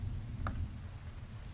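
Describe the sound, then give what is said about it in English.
Soft, steady summer rainstorm ambience with a low rumbling undertone, quiet, broken once by a faint single tick early on. No voices. “So you guys get back to the ledge, and it's the storm is continuing around, some sort of a summer rainstorm, and it's the exact same as you left it.”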